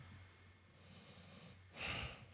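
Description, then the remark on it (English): A single sharp, breathy exhale, like a heavy snort-like breath, rising out of a quiet low hum near the end with no talking. “Now you sitting here breathing, talking about Ali might win.”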